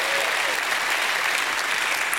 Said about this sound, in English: If you love him this morning, put your hands together and give him another hand clap and a shout of praise.